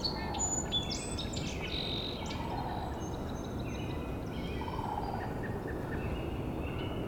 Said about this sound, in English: Here's our sandhill crane coming. Presumably more than one.